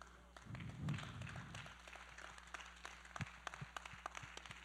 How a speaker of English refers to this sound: Golf claps.